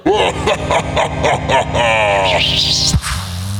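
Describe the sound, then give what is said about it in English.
A string of squeaky, yelping bursts gives way to a warbling tone that sweeps upward, then cuts off into a low, buzzing, fart-like blurt, a cartoonish portal exit effect. “There's that weird fart noise portal exit again.”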